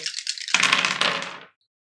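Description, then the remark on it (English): Dice rattle and clatter across a hard surface for about a second and a half in an opposed roll, a loud burst of rapid clicking that stops abruptly. No one speaks. “It's all down to the dice.”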